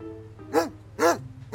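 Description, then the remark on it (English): A junkyard dog barks three times at a steady pace, each bark short and full, with a low hum underneath and nobody speaking. “How's our favorite junkyard dog doing?”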